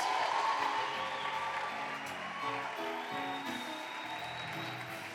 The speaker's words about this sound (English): let's clap our hands and a shout of joy as we welcome Pastor Chris